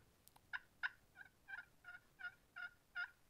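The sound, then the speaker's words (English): A wild tom turkey calls on a crisp morning: a run of about nine short, evenly spaced yelping notes, moderately loud and clear against a quiet background, with no talking. “Turkeys will be a tom turkey in the morning when it's really crisp and there's no other sound out there can hear that for a half a mile.”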